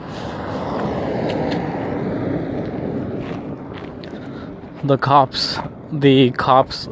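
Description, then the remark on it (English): A police truck drives past on a nice day, its engine and road rumble loud at first and then fading before someone starts speaking over the quieter street. “It's a truck, but it's a police truck.”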